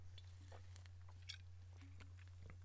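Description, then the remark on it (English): Someone sips beer, with a few soft wet mouth clicks and slurps over a steady low electrical hum, quiet and without any talking. “Get another sip of the old beerski here.”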